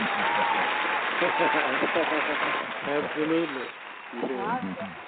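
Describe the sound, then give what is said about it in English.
A burst of steady clapping from a group fills the opening seconds, then thins and fades while voices begin talking over it. “Okay, well, let's give everybody an applause and thank the writer.”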